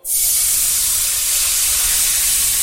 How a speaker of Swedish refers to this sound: Och vad händer egentligen nu där nere i pannan då? Nu har vi deglaserat pannan med vitt vin och fett från guancialen.